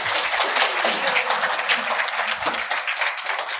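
A round of applause from a crowd, dense overlapping claps forming a steady, continuous crackling wash that holds at an even, fairly loud level throughout with no talking.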